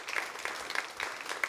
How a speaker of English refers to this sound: for everybody in the AV booth, everybody who greets along the doors, who helps put out the parking signs, who helps make the coffee, the staff team that's doing all the different pieces and parts. Can we just give them all a round of applause?